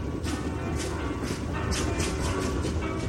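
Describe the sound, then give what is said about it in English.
A train, carrying Ayn Rand to California, rolls steadily along the rails with a constant low rumble and a regular rhythmic clatter of wheels over track joints, fairly loud with no voices. “When they bought her a ticket to California, Ayn Rand was more than happy to board the train.”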